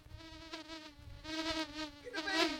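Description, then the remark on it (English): A steady, droning insect buzz like swarming bees, sampled and played on a keyboard in pitched bursts that swell and shift toward the end, loud with no voices. “There's even a bit where I think he's playing the bees, like into a keyboard thing.”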